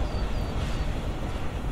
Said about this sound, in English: And now a train, surrounded by transport.